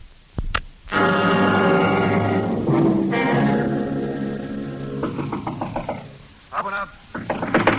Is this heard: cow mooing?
no